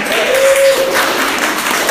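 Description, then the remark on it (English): An audience claps in a steady, dense wash of applause that holds at an even, fairly loud level throughout, with a brief thin tone rising above it early on. “Okay, so those of you who don't know, right now we're in implementation season, which deserves a little bit of applause.”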